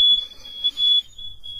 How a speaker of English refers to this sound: Mm-mm. Smoke alarm.